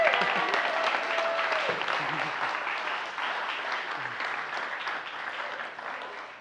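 A crowd claps in sustained applause, a dense, steady patter of many hands that holds loud for several seconds and then slowly tapers off, with a few faint voices underneath.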